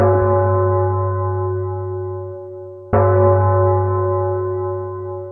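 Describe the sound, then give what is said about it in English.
A large bell in a hangar rings out twice, about three seconds apart, each strike loud and resonant with a long, slowly fading ring over a steady low rumble of hangar noise. No one speaks. “A bell pealed over the general rumble of noise in the hangar, and everyone stopped whatever they were doing and glanced toward the glassed-in observation bay.”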